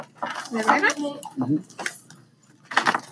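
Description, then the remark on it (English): A brief clatter of dice tumbling onto a table, a few quick rattling knocks, mixed in with people talking. “Roll your dice.”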